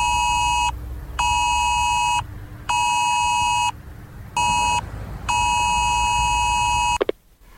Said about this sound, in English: And they'll do it through sending an alert to a mobile phone. And this alert is going to sound something like this.